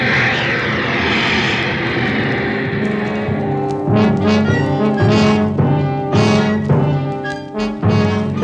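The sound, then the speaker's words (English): Loud, steady engine drone with a deep rumble and a constant mechanical whine in a ship's engine room, joined after a few seconds by repeated clanking, rhythmic bursts of machinery working. “The ones down there in the engine room.”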